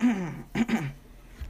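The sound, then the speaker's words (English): A man clears his throat in a few short, rough bursts, fairly loud, followed by a brief quiet pause with no talking. “I have to clear my throat on this one.”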